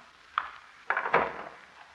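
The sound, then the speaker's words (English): Three locks on a door are unlocked one after another to open it, three sharp metallic clicks and clunks at uneven intervals, the last two rattling together, fairly quiet with no voices. “she's unlocked three different locks to open that door.”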